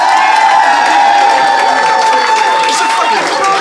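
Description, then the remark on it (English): A live studio audience of about 120 people at the Phoenix, the Flatshare Slamdown audience, claps and cheers loudly and continuously, a dense wash of applause with whoops and shouts rising through it, full for the whole stretch. “So if you think Marcel and Ben, and therefore Mark, won the day, applaud now.”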